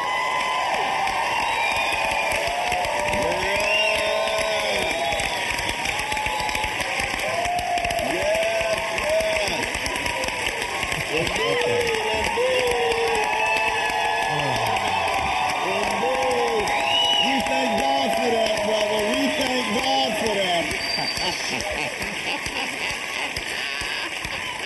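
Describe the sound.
A crowd applauds and cheers steadily throughout, a dense wash of clapping with scattered whoops and raised voices rising above it.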